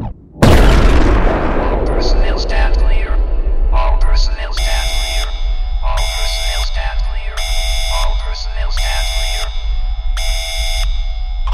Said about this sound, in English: There is a large explosion sound in the service module.